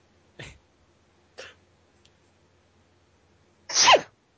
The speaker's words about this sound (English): Way to adorably sneeze into the microphone. That's staying in.